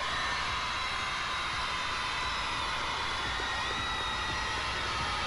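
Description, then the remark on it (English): A large crowd cheers and roars without letup as a Grammy-winning rapper's name is announced, a dense, steady wash of noise that holds at a loud level for the whole stretch, with no single voice standing out. “So let's take a listen to the crowd.”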